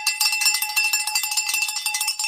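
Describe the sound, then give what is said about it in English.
A handbell is shaken rapidly and continuously, giving a bright, ringing metallic jangle with steady rhythmic pulses, fairly loud, with no voices. “We rang the bell, right? Let's ring it again.”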